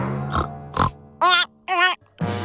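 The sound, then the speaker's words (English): A pig grunts twice in short bursts, then lets out two louder, wavering squealing oinks and starts another, clear with no talking. “Why did I turn into a chubby pig?”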